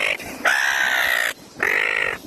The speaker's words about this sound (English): Suddenly, a seagull crashes the shot.